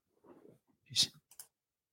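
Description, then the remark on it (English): A quiet mouse click rings out sharply, then two smaller clicks follow quickly, preceded by a soft, low rustling murmur. “Let me see what happens if I click it.”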